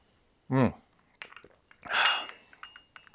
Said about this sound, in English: It is a privilege for me to be here with you, and I'm going to enjoy a sip of my delicious coffee.